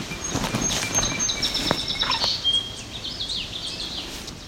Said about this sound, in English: Yeah, who's ticking at? So we appear to have yellow warbler above us, making all that sound. Female yellow warbler.